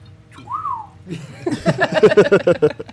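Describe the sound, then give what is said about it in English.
A person imitates a little robot: one clear, rising-and-falling whistle, then a fast run of warbling, beeping chirps made with the voice, loud. “Right, so he does right, whistle and chirp.”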